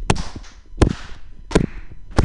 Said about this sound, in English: You guys, I need you to give me a beat clap so that I can rap in Spanish. Here we go.